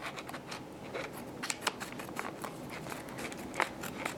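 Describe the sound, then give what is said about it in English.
Scissors snip through the stiff plastic packaging of a cane tip, a run of quick crisp cuts with faint crinkling between them, fairly quiet and with no talking. “All right, I got my scissors. Let's cut open the tip.”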